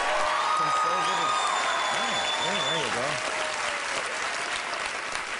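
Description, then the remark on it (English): Loud, steady applause from an audience with scattered cheers and whoops, a dense continuous wash of clapping lasting several seconds, with a few voices rising and falling over it. “Yes, applaud me, my stupid minions.”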